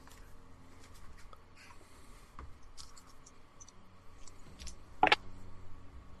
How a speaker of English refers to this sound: That dice went on the floor. Where's that gone? I'll have to roll a different one.